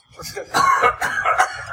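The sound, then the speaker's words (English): A person fakes an exaggerated, theatrical cough as if calling in sick to work: a few loud, harsh, drawn-out hacking bursts in quick succession, with a strained vocal quality. “By the way, when you call up sick to work, please don't cough.”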